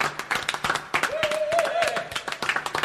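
A small group applauds steadily, with dense, overlapping hand claps throughout. Partway through, a wavering, voice-like whoop or whistle rises over the clapping.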